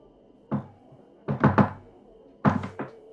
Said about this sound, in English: So, if you need to get back, just knock 3 times.